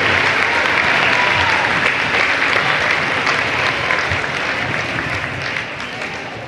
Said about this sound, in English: Ladies and gentlemen, a big round of applause for these ladies' teams who fought hard to get where they are today.